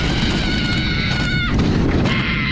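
A woman screams on a roller coaster: a long, high, wavering shriek, a brief break, then another cry, all over the ride's loud, steady roaring rumble.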